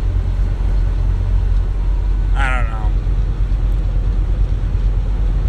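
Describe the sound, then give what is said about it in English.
Steady low engine drone and road rumble fill a truck cab for the whole stretch, loud and unbroken, with a brief high-pitched squeal midway and a man speaking a few words. “There's a couple things going on with this truck.”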